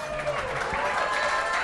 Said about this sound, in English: Crowd's going wild.